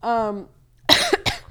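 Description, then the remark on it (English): A drawn-out voiced sound gives way to two harsh, raspy coughs in quick succession, fairly loud, with a short pause before the second hack. “Like, these coughs sound so bad.”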